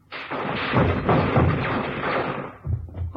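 A loud burst of automatic gunfire, a single burst fired on command at a man's chest, rattles on for about two and a half seconds as rapid overlapping shots, then stops, leaving a few dull thuds.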